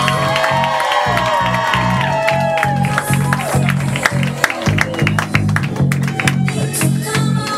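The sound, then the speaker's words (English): An audience claps and cheers loudly and continuously, with dense, rapid hand claps, rising whoops and shouts from many voices, over a steady, rhythmic low thumping beat throughout. “Start clapping. Start clapping.”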